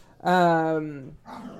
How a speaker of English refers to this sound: if you hear the dogs, take a shot.